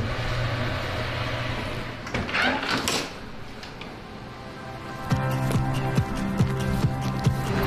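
A truck's engine rumbles steadily, with a brief whooshing burst and then repeated clunks and rattles as it moves off. No one speaks.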